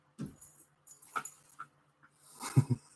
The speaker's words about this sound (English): And my dog just ran into the door by accident. She was trying to turn and boom, she hit on the door. She's fine. She's okay.